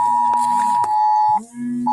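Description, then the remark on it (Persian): A storm warning alert tone for the Nebraska area: a steady, high-pitched electronic beep that holds loud and unbroken, briefly cuts out, then resumes, with a lower hum underneath and no voices. “نه، این منطقه نبراسکاس دارن در مورد استورم، در مورد استورم دارن چیز میدن، دارن در وارنینگ میدن.”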